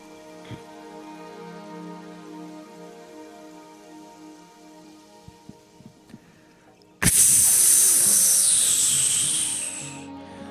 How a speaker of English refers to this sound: As you pour the water onto the left hand of the statue, it swirls and spins faster and faster until it begins to crystallize.